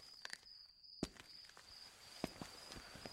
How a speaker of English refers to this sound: When I fell asleep, I expected to eventually be startled awake again, and I was. But not by a train. This time it was approaching footsteps.